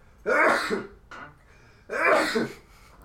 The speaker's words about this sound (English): I'm leaving those sneezes in. Just kidding. Why don't you take them and remix them for the intro?